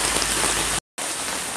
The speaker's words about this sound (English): Yes, it's a storm in Northern Cal, Russian River, and it's coming down 36 feet, may reach 46.